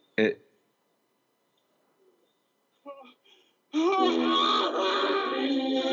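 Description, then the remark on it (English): A man screams in a sustained, loud, strained howl that fills the second half, preceded by a short sharp cry and a few brief vocal sounds with quiet gaps between them. “Okay, it's just him screaming.”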